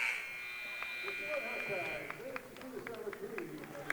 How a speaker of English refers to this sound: Butler's three-pointer is going to be no good at the buzzer, and that's the end of the first half of play